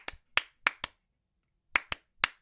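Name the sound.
rhythmic hand clapping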